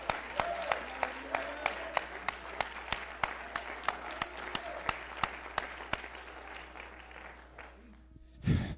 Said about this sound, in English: Give him a hand clap on that.